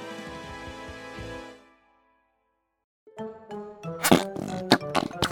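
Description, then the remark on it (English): After a brief tonal, humming passage and a pause, a run of wet, squelchy fart-putty noises follows: several loud, irregular blurts with a rubbery, buzzing quality and sharp squishy pops, with no speech. “Do you have to carry that fart putty everywhere you go?”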